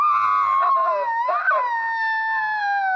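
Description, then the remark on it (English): A child's voice imitates an elephant trumpeting, sent in as an impression: one long, loud, high-pitched wavering call that swells and rises briefly in the middle before settling into a steady sustained tone. “And this is my elephant sound.”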